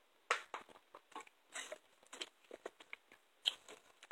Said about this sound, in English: Excuse me while I drink this water real quick.